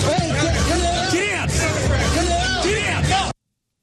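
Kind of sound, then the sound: crowd, crowd of people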